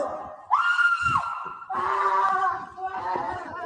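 person screaming

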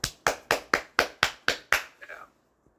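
applause sound effect

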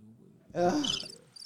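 cricket chirping

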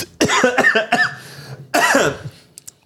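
coughing

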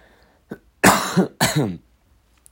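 coughing and throat clearing

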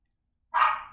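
guard dog barking

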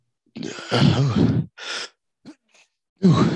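sneeze

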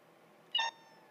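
cat meowing

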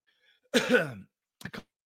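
coughing and throat clearing

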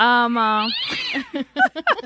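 angry cat yowling

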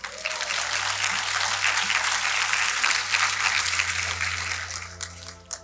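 audience applause

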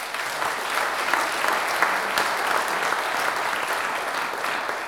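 applause sound effect

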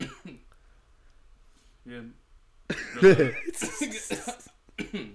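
coughing fit

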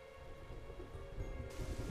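thunder and rain

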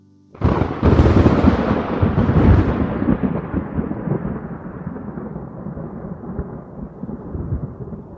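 thunder crash sound effect

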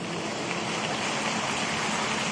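church audience applauding

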